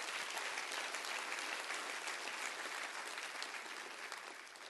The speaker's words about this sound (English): Clap your hands and say, thanks, Pastor, for preaching to us right now.